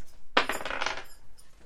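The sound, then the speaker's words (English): Percentile dice (a D100) clatter onto a hard tabletop, a sharp initial strike followed by a quick series of rattling bounces and rolls that settle within about a second, fairly loud with no talking. “Roll a D100, Chow.”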